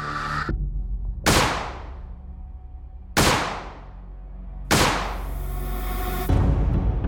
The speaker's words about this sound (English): She carefully aimed the gun at Phil and pulled the trigger 3 times.